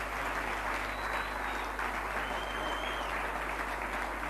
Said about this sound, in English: Just give the Lord a clap offering of praise.